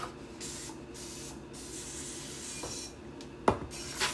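Several short, sputtering hisses from a nearly empty aerosol can of cooking spray, weak and uneven, followed by a sharp clink of metal.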